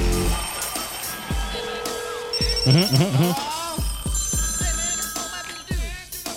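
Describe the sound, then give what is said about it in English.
A telephone rings with bright electronic tones over a busy, layered jingle, with a short vocal flourish in the middle; loud, running for several seconds, introducing a voicemail segment. “You've got voicemail.”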